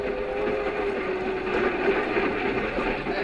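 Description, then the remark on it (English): A commuter train into the city rolls steadily along the rails, a continuous rumble with a faint sustained hum, heard alone with no voices. “I used to ride the commuting train to my job in the city, and I got to know all the regular commuters who rode in the same smoking car.”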